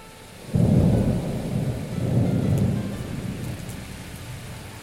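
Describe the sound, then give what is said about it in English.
A deep rumble of thunder rolls in suddenly and swells twice over steady rainfall as a storm draws in over an island, the low booming fading slowly as the rain keeps hissing; no one speaks. “Or were darker forces at play as a storm drew in that made the island unreachable until the 26th of December?”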